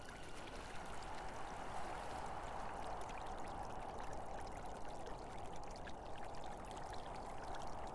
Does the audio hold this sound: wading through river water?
yes